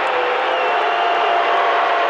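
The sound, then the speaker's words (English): A basketball arena crowd at a Utah Jazz game reacts to a bad referee call late in the game with a loud, sustained roar of many voices, a dense steady wash of noise that never lets up, with no single voice standing out. “Crowd doesn't like it.”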